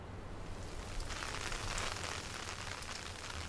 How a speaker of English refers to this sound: So, how's about that? Nice weather. Ah, I can't believe it's hailing.